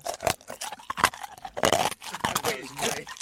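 Someone chews something crunchy, with a string of irregular, crackling bites and grinds over about three seconds, moderately loud with short pauses between the louder crunches.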